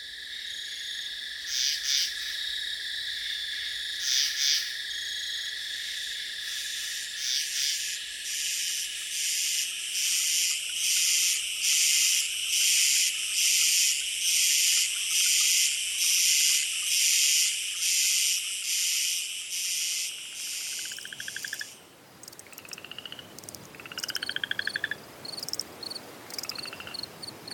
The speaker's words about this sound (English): Frogs likely joined the chorus about 200 million years ago, a date inferred from the timing of the split between modern singing frogs and their silent relatives.